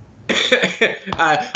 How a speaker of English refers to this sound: Well, I'm going to just... Sorry, I need to cough. Really sorry about that.